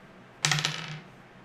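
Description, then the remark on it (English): Hard plastic polyhedral dice, including a d100 and d10s, are rolled across a tabletop during a tabletop role-playing game: a quick burst of bright, rattling clicks that settle within about half a second, with no voices present. “Roll me 2d10. Roll me a d100.”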